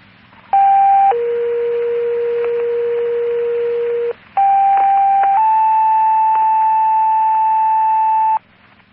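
Two-tone fire dispatch alert sounding over a radio for Truro Fire, sending a rescue call to Long Nook Beach for a possible shark bite: a steady tone steps down to a lower long tone, pauses briefly, then a second pair of sustained tones follows, loud and clear with faint radio hum underneath.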